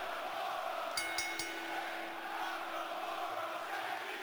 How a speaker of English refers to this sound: And that's a crowd, yo. WWE crowd.